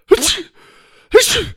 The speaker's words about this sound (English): He sneezed with every stride.